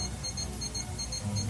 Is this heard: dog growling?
no